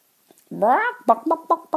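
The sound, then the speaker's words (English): A person imitates a chicken clucking: one drawn-out rising squawk followed by four short, evenly spaced clucks, fairly loud, with nothing else around it. “That's me. Complete chicken.”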